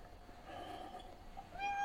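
A cat named Billy meows in a drawn-out, wavering cry that rises in pitch toward the end, moderately loud, with no talking over it.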